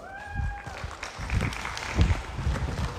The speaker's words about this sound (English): clap as they come out, please.